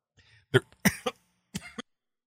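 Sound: coughing fit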